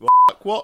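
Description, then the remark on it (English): A single loud, steady electronic beep lasting about a fifth of a second, cutting across a clipped burst of speech, with a man's voice speaking briefly right after it. “What was that beep?”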